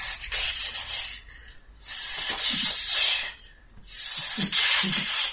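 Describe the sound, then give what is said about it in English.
Three long bursts of dry, rattling hiss, like a snake, with a low grinding, gear-like churn underneath. Loud, separated by brief near-silent pauses, with no voices. “It definitely sounds like a snake hissing, but it also sounds like gears and something being ground in them and something dry shifting in there.”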